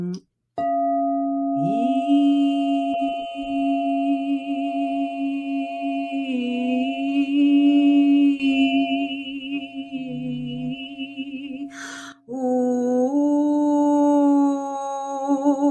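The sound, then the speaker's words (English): A singing bowl rings with a sustained, shimmering tone while a voice hums along in a long, wavering drone, briefly breaking off near the end before both resume together. “Can you give us a little burst with one of the bowls?”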